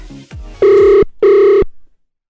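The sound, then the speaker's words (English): Two steady electronic ring tones of an outgoing phone call, each about half a second with a short gap between, loud and clear after a brief bit of handling noise. “All right, it's ringing.”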